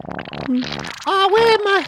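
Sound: fart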